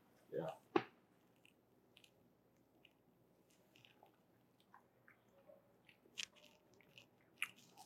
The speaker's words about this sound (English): Well, my favorite part of the episode is when we take a sip. Yep. So let's go ahead and do that, man. Let's do it.